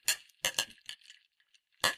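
Several bright glass clinks ring out in quick succession, followed by a short pause and one more clink, fairly loud, each leaving a brief shimmering ring, as glasses of a Clamato and Corona drink are raised in a toast.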